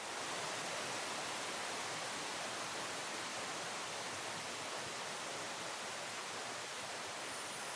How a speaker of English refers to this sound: It sounds like somebody's in the shower. I'll spare you the guessing. This is the actual recording from the bottom of the Challenger Deep, just sitting there. Oh, it's a recording of silence.